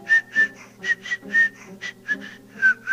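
A high, thin whistle rides on breathy airflow, repeating in about ten short bursts with each breath, as air whistles through a man's nostril, fairly loud, with no talking.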